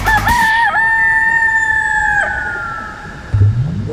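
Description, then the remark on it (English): A chicken lets out a loud, drawn-out crow with a strong harmonic tone, preceded by a brief squawk and followed by a short clucking squawk at the end, clear. “Oh, we're so close, but we've run out of chickens.”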